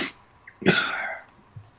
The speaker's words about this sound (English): I know it was fixed, and sorry about all the coughing, y'all. I got bad allergies right now, so.